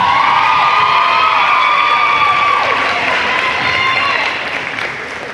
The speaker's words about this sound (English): And our most valuable player, hey, I'm just giving an effective applause here.